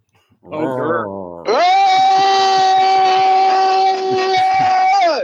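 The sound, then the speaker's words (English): At a candidates' debate, voices answer a call to roar with a brief rough growl, then one loud, sustained, tonal roar held steady for almost four seconds before cutting off, like a voice imitating a big cat's roar. “I heard a little bit of purring and a really big roar there.”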